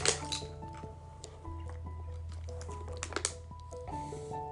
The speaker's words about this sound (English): Let me get some water.